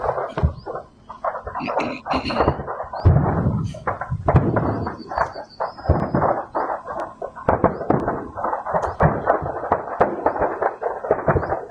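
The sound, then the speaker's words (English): Ammunition cooking off in separate sub-explosions after a big explosion, a rapid, continuous string of sharp pops and bangs, fairly loud and irregular, crackling on without pause like a long burst of firecrackers. “Sounds like ammo going off. In separate sub explosions after that.”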